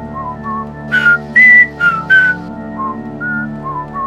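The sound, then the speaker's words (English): Someone whistles an annoying, tone-deaf tune in a string of short, shrill phrases and wavering held notes, fairly loud, with a few noisy breathy bursts mixed in and no talking. “When in doubt, whistle an annoying tune.”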